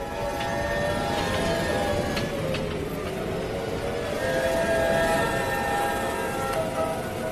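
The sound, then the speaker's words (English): Howling hurricane wind roars steadily and loudly, a dense rushing wall of noise with shrill, wavering whistles rising and falling through it, with no voices. “They say it's like a freight train, like a woman or a banshee screaming.”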